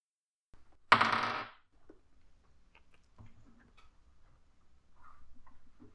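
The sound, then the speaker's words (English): A sharp clattering burst as dice hit a table, followed by a scatter of small, quieter clicks and taps as they tumble and settle. No one speaks. “I love this dice. It has been nice to me today.”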